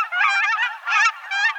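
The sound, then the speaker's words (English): High, squeaky calls of cackling geese, a small goose species just bigger than a mallard, come in rapid overlapping bursts, a flock yelping and cackling with short pauses between phrases. “The cackler's small voice suits perfectly its small size.”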